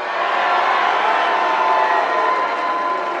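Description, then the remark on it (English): A large, raucous crowd at a President Trump rally in Pennsylvania cheers and roars continuously, a loud, dense wall of voices with no pauses, sustained throughout. “Right, this is a raucous crowd, guys.”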